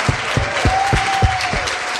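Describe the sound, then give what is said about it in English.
A church audience at a Father's Day service claps loudly and steadily for the fathers and for God, dense applause filling the moment, with regular low thumps keeping a beat and a sustained mid-pitched tone held underneath. “And let's give a huge clap for our great Father in heaven.”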